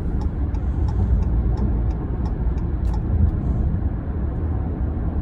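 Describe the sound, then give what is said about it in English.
Steady, loud low rumble of road and engine noise from inside a moving car in Baltimore traffic, with faint scattered ticks above it and no one talking. “Of course, traffic in Baltimore is just already screwed.”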